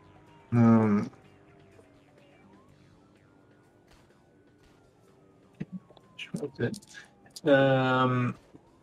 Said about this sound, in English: Music has the sound effect of cars. We don't actually have cars right now.